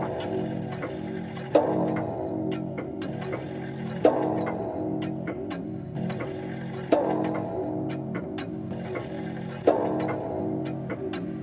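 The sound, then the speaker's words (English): An ebony clock standing in a hall strikes four slow, resonant chimes, each ringing out and fading before the next, over a steady mechanical ticking. No voices. “And anon, there strikes the ebony clock which stands in the hall of the velvet.”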